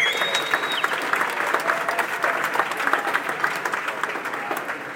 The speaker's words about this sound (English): One more round of applause for our founder, Aaron Pye, of the Surfers Hall of Fame.